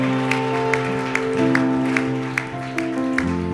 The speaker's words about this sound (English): Lord, a clap of hallelujah.